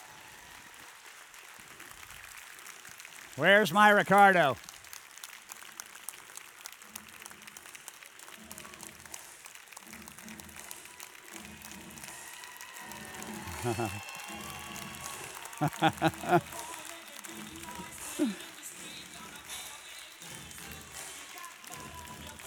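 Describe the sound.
An audience applauds steadily throughout, a dense, crackling wash of clapping. A brief warbling tonal burst sounds early on, and a man speaks briefly over the clapping.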